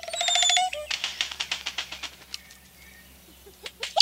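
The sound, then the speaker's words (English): An oropendola song: a bright, liquid gurgling call, then a rapid run of dry clicking notes, with a couple of sharp whistled notes near the end, with no talking. “Orapendulas sing a startling refrain.”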